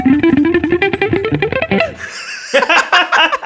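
A quick run of clean electric guitar notes, played without distortion, tumbling rapidly upward for about two seconds, fairly loud, followed by a brief pause and a short burst of voice.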